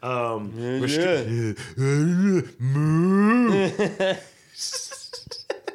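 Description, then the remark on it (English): A man's voice imitates a dying cow with loud, drawn-out, wavering groans that rise and fall in pitch over several swells, trailing off into breathy, raspy gasps. “I like to think that's how cows sound as they die.”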